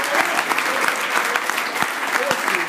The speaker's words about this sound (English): $600,000 was raised on Ohio State for the kids with cancer? Yeah, that's correct. That needs a round of applause. That's unbelievable.